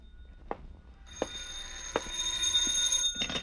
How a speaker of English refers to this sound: But I heard two things, a sigh that came from me and a phone ringing that came from the phone.